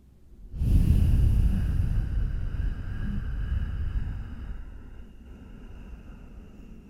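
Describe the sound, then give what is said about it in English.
A single long, audible exhale through the nose with the mouth closed and teeth together, a breathing exercise; a low, rushing, breathy sound with a faint hum-like quality, strongest at first and gradually fading over several seconds. “And making an audible sound, almost like a hum on the exhale.”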